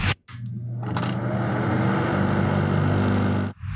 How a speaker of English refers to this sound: Because it's an exhaust fan.